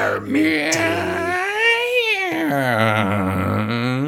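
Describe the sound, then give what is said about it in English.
A voice imitates a creaky door with one long, loud, drawn-out vocal creak that bends up and down in pitch, sounding whiny and strained for about four seconds. “I need a creaky door.”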